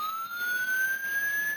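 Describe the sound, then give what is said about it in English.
An electronic siren tone slowly rises in pitch like an approaching police car, a car alarm's synthetic wail, steady and fairly loud with no talking. “Here's a few examples of some that didn't quite make the cut. The inbound police car.”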